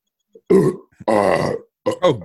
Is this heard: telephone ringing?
no